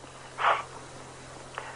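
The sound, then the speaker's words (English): A dog sniffing: one breathy, snuffling burst of air, then a quieter quick sniff a second later, over a low steady hum with no talking. “Sorry, there's a dog sniffing up my private parts.”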